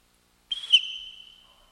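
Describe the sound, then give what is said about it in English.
A single sharp, shrill whistle blast starts abruptly after a brief silence, holds a steady piercing tone for about a second, then fades out, with no talking. “I said on my whistle.”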